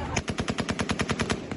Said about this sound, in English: This morning, more chaos as gunfire rang out.